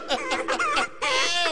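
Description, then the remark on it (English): A chicken clucks in a quick run of four or five choppy notes, then lets out a longer, drawn-out squawk, loud with no one talking. “Thank God we got a fucking chicken.”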